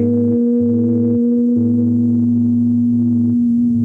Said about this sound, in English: So let's do a little hum, and there's different variations in energy and action, but we'll do this one. So we're going to inhale. Hum.